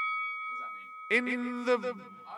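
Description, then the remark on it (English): A boxing ring bell rings out with a steady, sustained metallic tone that lingers throughout, while a voice joins partway through with a few short, rhythmic bursts over the fading ring. “So let's ring that bell. Ding, ding, ding, ding, ding, ding.”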